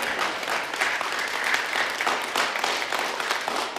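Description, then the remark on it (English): A church audience claps their hands together as a clap offering to God, in sustained, dense applause, steady and fairly loud throughout, with many overlapping claps blending into a continuous roar and no voices standing out. “Come on, church, give God a clap offering.”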